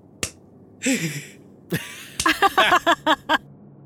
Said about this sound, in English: Weak clap.